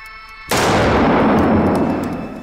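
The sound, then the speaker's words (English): A sudden, loud revolver blast: two shots fired almost at once, one at each of two targets, merge into what sounds like a single sharp report, followed by a long rumbling echo that slowly fades. “Two bullets, and I heard one shot, and that was it.”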